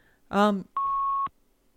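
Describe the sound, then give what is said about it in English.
A single steady phone-line beep from a call placed on hold, a clean mid-pitched tone lasting about half a second, comes right after a brief bit of voice on the call. “I think … put me on hold again. Is that beeping loud?”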